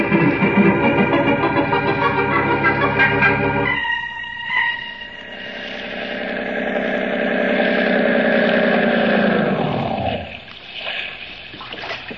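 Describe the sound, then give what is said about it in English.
A motorboat engine runs loudly with a steady throbbing drone, then shifts to a smoother roar over churning water before winding down near the end, with splashing audible. “I think we'll take a little boat ride.”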